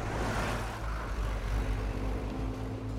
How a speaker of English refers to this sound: driver Randall gave a blast from the rail car's roof-mounted air horns and chugged away from the